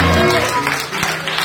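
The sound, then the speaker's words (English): An audience at a church service claps their hands in a dense, steady wash of applause lasting the whole moment, with voices and a faint tonal hum mixed in underneath. “Clap your hands for a perfect place.”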